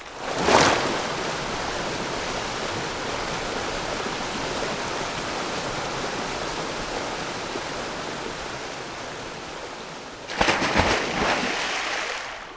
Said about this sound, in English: Ugh, you put me all wet. It's very rude to burst into the walls in a gush of water like you did.